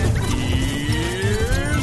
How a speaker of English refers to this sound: Sounds like a horse.